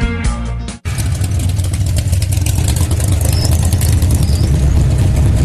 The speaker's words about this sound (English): Okay, we are back and you're tuning into Nostalgic Radio and Cars, and just dig that car sound effect. You know what, Bobby, is that the one I recorded when we were at the racetrack that one time over in Lakeland?